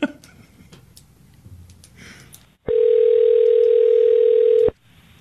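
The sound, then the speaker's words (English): A steady, loud telephone tone sounds for about two seconds after a quiet, faintly noisy stretch, then cuts off abruptly, before a recorded phone call. No one speaks. “We got a phone call, and this was pretty much the phone call that we got.”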